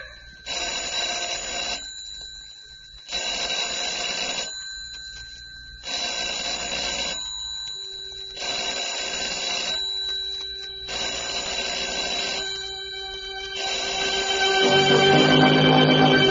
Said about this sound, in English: telephone ringing in an empty house.